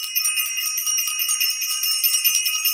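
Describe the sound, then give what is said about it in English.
A bell rings continuously for a few seconds, a bright, high metallic tone with a rapid, buzzing pulse and steady loudness throughout, with no voices. “Want to ring the bell for self-invested.”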